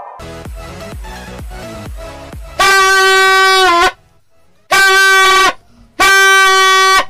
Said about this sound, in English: All I will do is be playing Vuvuzela.